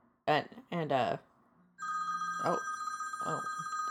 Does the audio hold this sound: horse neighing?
no